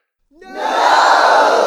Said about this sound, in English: "Will we wait for the soil to be spoiled?" the man shouted. "No!" shouted the crowd.